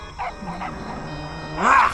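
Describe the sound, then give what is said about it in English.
Lion dogs yelp in pain as they take a beating, with a few faint cries early on and then one loud, sharp, rising yelp near the end, set against a low rumbling background. “The lion dogs are taking a beating.”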